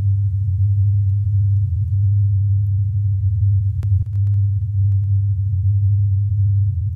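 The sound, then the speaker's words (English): An approximation of the Taos hum of Taos, New Mexico: a steady, low droning hum holds at constant loudness throughout, deep and continuous, with a couple of faint clicks near the middle and no voices. “This is the hum, or at least an approximation of it.”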